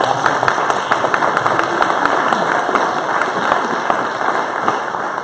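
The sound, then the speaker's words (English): An audience applauds steadily for the graduates and the children dedicated that morning, with dense overlapping handclaps forming a loud, continuous wash of clapping. A few sharper individual claps stand out, and no one speaks. “All right, let's give the graduates and our kids that were dedicated this morning one more round of applause.”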